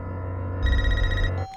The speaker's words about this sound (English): Old school phone.